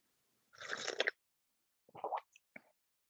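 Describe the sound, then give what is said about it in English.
A soft slurping sip of hot tea from a mug, followed by a few brief wet mouth and swallowing noises. No voices, just quiet surroundings. “And when you're ready, take a sip.”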